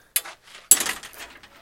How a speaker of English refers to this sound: Bud, there goes the gate. We're out the gate.